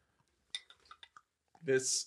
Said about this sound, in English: Give me the champagne. These glasses hold like two sips.